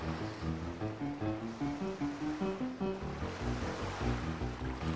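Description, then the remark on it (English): Rising flood water surges and washes in steady, rolling waves, loud, with a low tonal drone of music running beneath the constant swell. “We had better get on with the show before the water reaches my head.”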